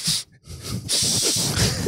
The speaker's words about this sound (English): And then he sniffs, and then he goes, don't tell your mom what I just told you.